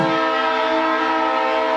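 A loud train horn blares in one steady, sustained blast, its rich harmonic tone holding unbroken from start to finish with no voices present.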